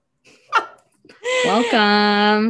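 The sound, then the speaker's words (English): A dog vocalizes excitedly: a quick, sharp yelp, then a long, loud, wavering cry that rises in pitch and holds steady. “And your dog's like losing it in the background.”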